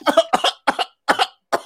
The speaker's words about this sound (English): He coughing because of some bullshit.